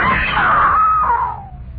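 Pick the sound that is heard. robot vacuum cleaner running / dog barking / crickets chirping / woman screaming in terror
woman screaming in terror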